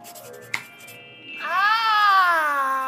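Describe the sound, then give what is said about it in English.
A cat lets out one long, drawn-out meow, fairly loud, its pitch rising and then sliding down. A short bright ding and a faint steady ringing tone come just before it. “Oh, kitty, kitty, kitty.”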